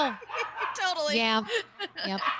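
Dogs yelp and bark in a rapid, overlapping string of high, wavering cries, fairly loud, with barely a pause across the short stretch.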